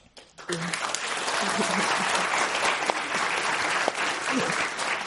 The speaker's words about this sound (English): I know, we're just going to keep clapping after every answer.